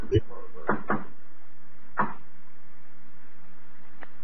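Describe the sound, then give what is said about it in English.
A blind man knocks on a wooden door at the end of a corridor, a few sharp, hollow knocks: a quick double rap, then a single knock after a pause, fairly loud, with a faint tap at the end. “We stopped in front of it, and the blind man knocked.”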